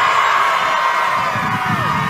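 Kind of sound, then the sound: crowd, rally crowd cheering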